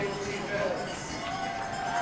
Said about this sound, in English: Stomping of the feet as the Patriots get loud here.